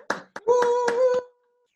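Brief, thin applause at a concert as a performer enters the stage: about six sharp claps spaced unevenly over a second, with a steady, whistle-like cheer sustained beneath them. The sound then cuts off into silence.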